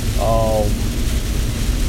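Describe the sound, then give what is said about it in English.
Steady rain, picking up in intensity, hisses continuously in the background, a dense, even wash of noise with a low rumble beneath it, interrupted early by a brief voiced sound. “Y'all hear that rain? It's picking up.”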